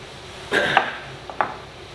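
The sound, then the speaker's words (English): Scotch being poured into a glass: a short splash with clinking glass around it, then two quicker, fainter clinks. No one speaks. “Pour myself a little bit more because, God, I love scotch.”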